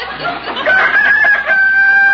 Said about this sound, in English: You old rooster, you shut up.